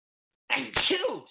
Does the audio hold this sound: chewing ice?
no